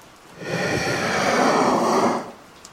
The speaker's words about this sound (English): The sound broke occasionally and twisted on itself. Wheezing turned into a crackled sort of vocalization as it folded and stretched. I could hear it, pressed up against the base of the door now.